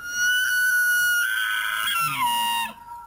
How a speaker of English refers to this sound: I thought it would be deeper. Do we have any angry elk? That's just an elk talking, I guess. If you would have played that sound for me without knowing what it was, I would have thought it was some kind of dying bird.